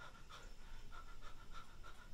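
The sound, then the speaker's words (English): A person imitates a hare panting after running at full speed: quick, rhythmic breathy huffs, about three per second, steady, with no talking. “you see it first as a little bit hard to see because it's technically still snowing, but you see a hare just run at full speed, like going from where the road is, following it, stops over here, panting.”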